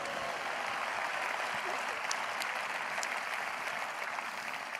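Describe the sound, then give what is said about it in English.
A church audience claps their hands for the Lord in sustained, dense applause, many hands blending into a steady roar for several seconds with occasional sharper individual claps standing out. “Give the Lord another great hand clap.”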